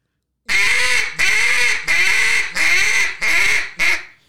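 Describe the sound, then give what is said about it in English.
A duck call blown as a lonesome hen greeting call: six long, drawn-out nasal quacks in a steady, evenly spaced rhythm, loud with no talking. “And all these things that I'm doing with the greeting call, the lonesome hen, it's all a little variable.”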